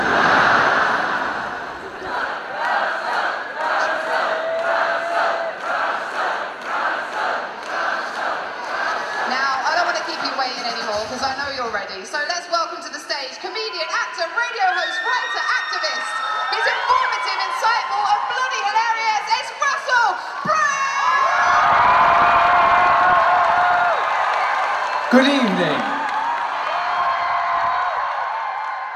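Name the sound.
crowd cheering and whooping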